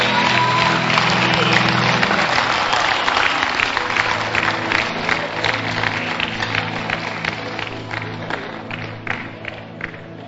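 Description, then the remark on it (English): An audience breaks into sustained clapping and cheering for Jesus, a dense wash of applause with scattered whoops over a low steady hum, slowly thinning toward the end. “Clap for Jesus.”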